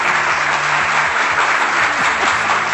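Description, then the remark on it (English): A dense, steady burst of applause from a crowd, loud and sustained throughout with no pauses, the claps blurring into a continuous roar. “Let's give Eytan, ladies and gentlemen, a roaring round of applause here.”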